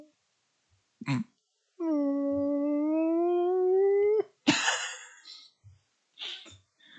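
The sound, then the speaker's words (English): Someone imitates a space whale call with a long, drawn-out moaning tone that slowly rises over a few seconds, followed by a breathy, rushing burst and a few short vocal sounds. “… is impressing as a squale, everybody. It's my squale call.”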